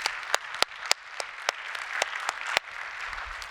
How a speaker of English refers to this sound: He actually helped me design this series, so I'd love for us to give him a big round of applause as he comes on stage.